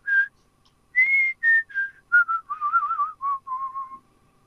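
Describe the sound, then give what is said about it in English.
A man whistles a short Christmas tune, a string of clear, bright notes rising and falling with brief gaps, ending with a wavering run of lower pitches. “I'm just whistling Christmas.”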